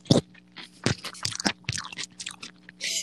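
Wet crunching and chewing of a juicy 5-inch pickle, with a sharp first bite followed by several moist, squelchy chews in an irregular rhythm, loud with no talking.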